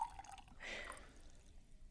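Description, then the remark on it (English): A brief, quiet splash of liquid being poured into a glass of water, a short trickling burst lasting under a second against a faint background, with no one speaking. “So just to let everybody know that that's the case, I'm going to pour it into a glass of water here.”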